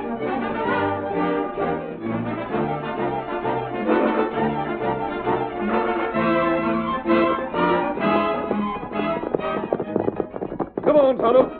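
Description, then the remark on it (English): The horses Silver and Scout gallop with rapid, rhythmic clip-clopping hooves as they are urged on, partly buried under loud, dramatic orchestral music that swells throughout, with a few sharper beats near the end. “Steady, Silver. You hurry. Get him up, Scout. Come on, Silver.”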